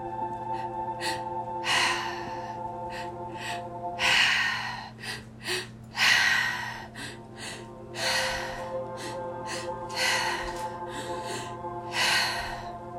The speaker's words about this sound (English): Now, let's begin. Remember, this is a three-part breath.